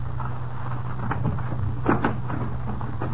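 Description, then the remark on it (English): A few hollow knocks on a door, irregularly spaced with a quick pair near the middle, over a steady low background hum. No one speaks. “Ah, here we are. I'll knock.”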